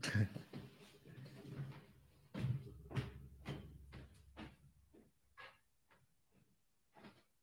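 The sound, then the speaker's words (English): A door is opened to answer a visiting neighbor, with a series of sharp clicks and thumps, some with a hissy, scraping edge, at moderate loudness, while faint muffled voices murmur in the background. “Oh, there's someone at my door.”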